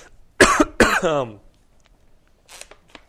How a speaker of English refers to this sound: I'm coughing.